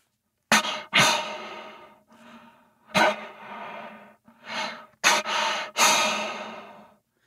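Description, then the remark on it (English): Heavy, aggressive breathing of an angry bull elk: about half a dozen loud, raspy huffs and drawn-out exhales in an uneven rhythm, with no talking. “So this is more of a heavy breathing noise where he's just pissed off and breathing hard.”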